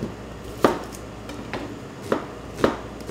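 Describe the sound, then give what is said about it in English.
A knife dices a large onion on a cutting board, sharp chops landing at an uneven, unhurried pace, roughly one every second or so, with quiet pauses between. No one speaks. “Okay, so we want a large onion. Just want to dice this up.”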